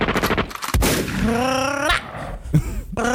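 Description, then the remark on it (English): Several sharp, loud gunshot bangs go off at irregular intervals, with a rising, whining tonal sound and rough noise filling the gaps between shots. “All right, gunshots for an hour.”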